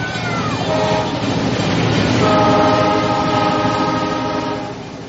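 A toy train set running flat out: a steady, loud rattling rumble with whistle-like tones sounding over it, easing off slightly at the very end. No one speaks.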